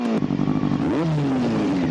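A motorcycle engine revs, loud and steady, its pitch climbing sharply about halfway through before easing back down into a rumbling idle.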